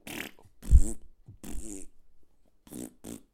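fart

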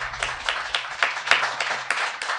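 round of applause

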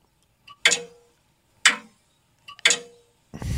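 grandfather clock ticking

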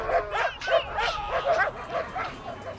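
dogs barking

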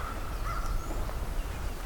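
bird calling nearby

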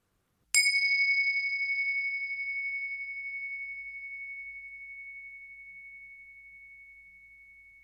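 ringing meditation bells

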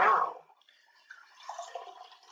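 beer poured

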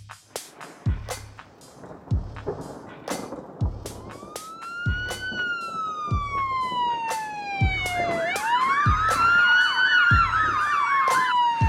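police car siren passing

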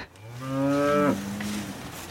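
cow mooing

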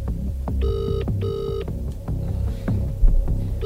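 phone call ringing tone

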